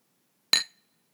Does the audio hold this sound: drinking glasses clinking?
yes